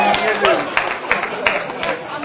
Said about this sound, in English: And, whoa, hold your applause.